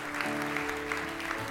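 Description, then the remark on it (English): An audience at a church service applauds for Jesus after a prayer, with steady, dense clapping that stays even throughout, while sustained low keyboard chords hold underneath and shift once or twice. “I think Jesus deserves a round of applause this morning.”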